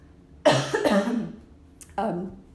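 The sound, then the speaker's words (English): Fairly loud coughing: two rough coughs in quick succession, then a short pause and one more harsh cough, with no talking. “I'm gonna cough.”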